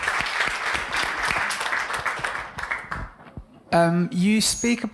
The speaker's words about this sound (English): If we can have a round of applause